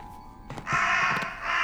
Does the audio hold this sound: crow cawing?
yes